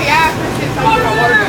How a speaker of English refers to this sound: Guys, a scooter.